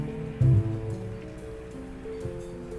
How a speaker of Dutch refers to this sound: Het park wordt zelfs in de regen nog gebruikt.